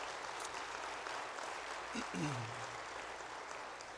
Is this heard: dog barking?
no